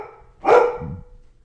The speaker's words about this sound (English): My dogs are barking, so forgive me.